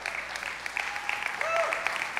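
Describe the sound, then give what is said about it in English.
A church crowd at a Father's Day service breaks into a round of applause for the men present, a dense, steady wash of clapping throughout, with a few high whoops or whistles rising above it midway. “That is worth a round of applause right there.”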